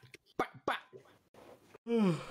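A voice imitates a dog barking: several quick, sharp yaps in an uneven rhythm, then a longer wavering howl-like cry at the end, fairly loud.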